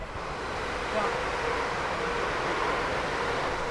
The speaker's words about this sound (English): And we are standing actually opposite the platform of West Hampstead Thames Link. Here comes the train.